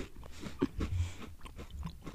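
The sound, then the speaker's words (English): Crunchy chewing by a person, a steady series of crisp bites and grinding mouth noises repeating over a couple of seconds with no talking. “All you can hear is you crunching.”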